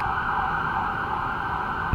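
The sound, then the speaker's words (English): A steady New York City emergency vehicle siren wails continuously, loud, with a sustained high tone over low rumbling traffic noise and a brief thump near the end. “you can enjoy a New York City siren as Vic Henley lets Judd in”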